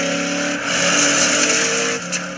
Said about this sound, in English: Crazy grandpa car. What an idiot.